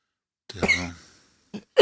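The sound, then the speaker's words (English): A person with a cough that came on out of nowhere coughs: one harsh, raspy cough with a voiced tail, then two quick, sharper coughs right after. No one speaks. “But I've now developed a cough out of nowhere, so that's not good either.”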